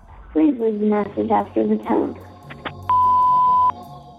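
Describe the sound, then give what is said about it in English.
A voicemail beep: after a brief stretch of a recorded voice speaking, a single steady, mid-pitched electronic tone sounds loudly for just under a second, then stops abruptly. “Please leave the message after the tone.”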